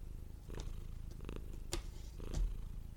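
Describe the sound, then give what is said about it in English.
A female cat purring as she lies on papers on a table, a steady low rumble running throughout, with a few soft rustling and tapping noises as she plays with paper and a cord, and no talking. “she will not get off of my papers, and she is just totally purring.”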